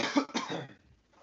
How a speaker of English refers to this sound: you can't be coughing in these times of COVID. What did I just say? I just choked on my water.